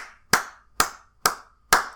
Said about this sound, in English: And so, during the COVID-19 crisis, you have people who are at home clapping.